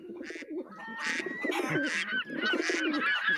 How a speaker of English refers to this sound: There's a lot of bird noises. That's a lot of birds. Actually, I can identify at least 3 of those birds. That was all 5 of the birds all together. All at once. That's all of the birds. That was all of them.